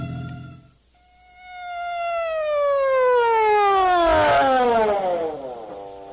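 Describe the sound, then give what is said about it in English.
An emergency vehicle siren wails loudly and steadily on the way to an alarm call on Pine Street, its tone sliding slowly downward over several seconds, with a brief surge of noise near the end and no voices. “So why the siren?”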